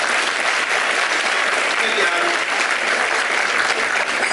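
Steady, dense audience applause fills the whole stretch, a broad hiss of many hands clapping at an even, loud level with no pauses or voices standing out.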